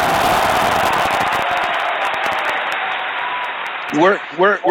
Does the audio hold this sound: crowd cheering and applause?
yes